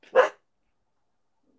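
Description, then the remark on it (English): A single sharp bark from the speaker's dog indoors, fairly loud, followed by silence with no one talking. “it's that ride where everybody sits and my dog's barking.”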